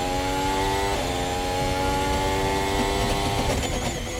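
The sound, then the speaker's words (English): A Formula 1 car bounces off the ground during a pole lap under a loud, high-revving engine whine that shifts pitch through gear changes, with rough rattling knocks near the end. No one speaks. “That's the car bouncing off the ground.”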